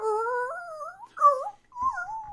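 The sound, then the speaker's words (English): A person imitates a dog's whimpering with three drawn-out, rising and falling whiny cries, high-pitched and tonal, with short pauses between them. “I've heard people make those noises, but I don't think those are dog noises.”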